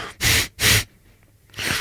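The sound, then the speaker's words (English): A voice imitates an animal's snorting breath: three loud, breathy bursts, two in quick succession, then a short pause before the third, with no talking. “The breathing, a sort of snorting sound.”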